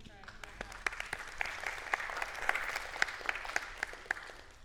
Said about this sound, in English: That was the weakest clap I've ever heard in my life. I was like, you know, sometimes I'm just sitting there, am I going to say anything about that or not? That was weak.